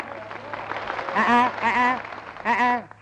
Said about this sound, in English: Not too much applause, folks.